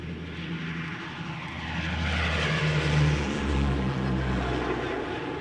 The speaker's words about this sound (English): The pilot starts the engines and takes off. Seconds later, the plane is airborne and knifing northward through the night.